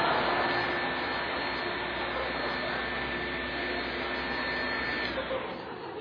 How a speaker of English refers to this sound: But, you know, that wastes a lot of electricity. So we eventually just recorded the sound of the vacuum cleaner.